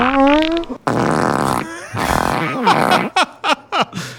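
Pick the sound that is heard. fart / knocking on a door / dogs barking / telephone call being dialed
fart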